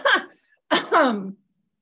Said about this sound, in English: Gosh, I'm sorry for this cough.